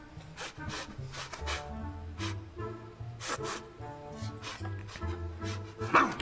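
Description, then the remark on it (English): A cartoon talking goat in a tracksuit that thinks it is a dog barks, a voice imitating short, loud bow-wow barks in quick uneven bursts over a steady background music track, with a sharper yelp near the end. “You got a talking goat that not only wears a Bruce Lee tracksuit, but not only thinks that he's a dog.”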